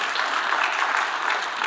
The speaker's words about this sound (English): We can clap for that, that's good.